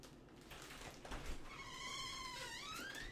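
A door swings open as a guest arrives, with a long, wavering hinge squeak that rises and falls for a couple of seconds, preceded by a soft bump, with no talking.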